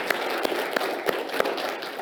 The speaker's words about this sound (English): Come on and give him one more hand clap of praise. Amen.